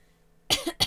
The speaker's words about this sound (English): See, now you got me coughing over here.